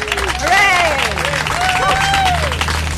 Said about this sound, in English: So could we collectively give a sort of round of applause and thanks to those other defendants?